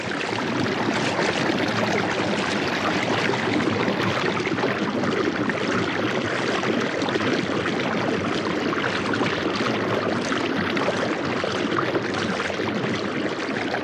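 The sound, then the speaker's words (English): Cascading water at the gorge at Blue Ledge, high in the Adirondack Mountains, recorded by Andrea Lockwood for A Sound Map of the Hudson River, rushes steadily and loudly, a dense, continuous roar filling the whole recording with no pauses and no voices. “Andrea Lockwood recorded the cascading waters found at the gorge at Blue Ledge, high in the Adirondack Mountains, as part of her work called A Sound Map of the Hudson River.”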